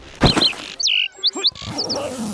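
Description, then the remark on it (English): A bird chirps several times in quick, irregular succession, heard from under a tree: short, high whistles and rising tweets, fairly clear, after a brief soft thump at the start. “I can hear my bird chirping.”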